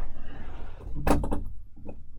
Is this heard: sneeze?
no